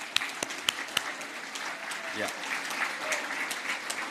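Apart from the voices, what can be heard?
audience applause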